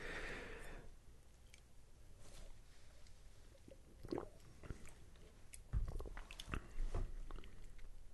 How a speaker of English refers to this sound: First sip. After all these other beers, seems really sweet. Mm-hmm. Seems really, really sweet. Almost like drinking wort.